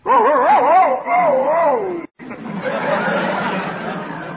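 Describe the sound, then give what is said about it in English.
A man's voice imitates a male dog answering a female dog's call with wavering, whining howls for about two seconds, then falls into a murmur of chatter and background noise. “The boy dog answered like this.”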